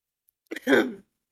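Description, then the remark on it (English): A person imitates a cough, as if coughing up a little blood: one brief, raspy burst that sounds close to throat clearing, moderately loud, with silence before and after. “And he's, like, coughing up just a little bit of blood.”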